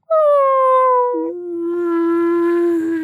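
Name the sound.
person imitating whale noises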